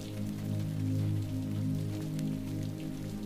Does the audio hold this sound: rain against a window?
yes